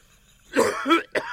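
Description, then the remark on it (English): Two quick, rough coughs, used as a sound effect marking a wrong quiz answer, follow a near-silent pause, the second a short sharp burst, loud with nothing else around them. “Unfortunately, you get a cough for Basra.”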